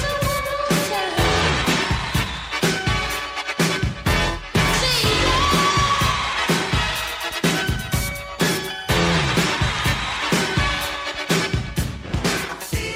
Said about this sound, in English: buried under the sound of a roaring crowd, you can hear … deep in the mix